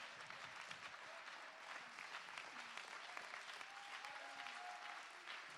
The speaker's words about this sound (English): Oh, I wish you'd clap your hands with us and give him praise.